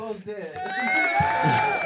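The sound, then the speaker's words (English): A brief burst of cheering: a sustained, rising whoop rings out over a rough wash of crowd noise and scattered clapping, fairly loud for just under two seconds. “Can we give you an applause there?”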